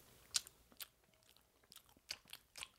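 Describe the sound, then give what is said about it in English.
Crisp chewing of glazed strawberry Donettes with sharp crunchy bites, several irregular crackly snaps spread across a couple of seconds, quiet overall with no talking. “Oh, you got a pretty good chew.”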